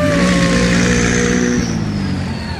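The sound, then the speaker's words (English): A car engine revs loudly, its pitch climbing then easing off as the motor settles into a steady, throaty hum over about two and a half seconds, with no talking. It is a car in a rolling parade at a car show. “Yes, that would be the last, that would be the next car.”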